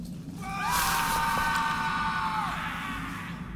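A single long, drawn-out scream used as a lure echoes, holding a high wavering pitch for about two seconds before dropping off, over a steady low rumble of background noise.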